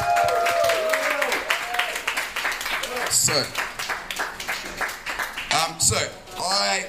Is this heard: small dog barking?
no